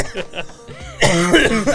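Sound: person coughing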